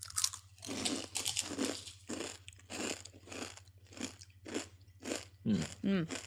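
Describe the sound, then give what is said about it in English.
Loud crunching of a crispy chip-like snack being eaten, about ten crackly chews in a steady rhythm, with a brief murmur of voice near the end. “It kind of feels like a chip because it's quite. It's very crispy.”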